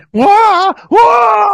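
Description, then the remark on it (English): Actor Alan Alda cries out in pain twice: a strained, wavering yell that breaks off, then a second longer, sustained howl. Both are loud and raw, with no speech around them. “I think Alan Alda, his pain scream is fantastic.”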